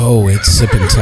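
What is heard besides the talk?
horse neighing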